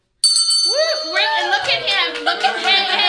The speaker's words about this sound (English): You get to pick up the bell and ring it once for the founder.